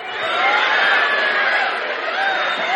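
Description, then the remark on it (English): An audience imitates bird calls all at once on a count of three, each person making the call of a bird: a loud, sustained jumble of chirps, whistles and squawks with a few higher whistled tones rising above the din. “All right, now on the count of three, nice and loud, you just make the sound of the bird that you are.”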